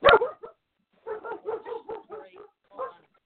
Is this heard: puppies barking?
yes